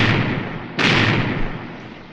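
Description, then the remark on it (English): A cannon booms once, loud and sharp, as a pirate galleon fires a broadside at a Spanish fort, rising out of a steady roaring rumble and then rolling away into a long, fading reverberation. No voices are heard. “Cannon firing must be a pirate force attacking a fort.”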